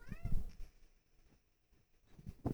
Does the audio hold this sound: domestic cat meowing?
yes